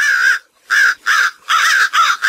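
Starling calls, loud: about five harsh, raspy squawks in quick succession, separated by short pauses, with no talking.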